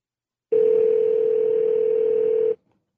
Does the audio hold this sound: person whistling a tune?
no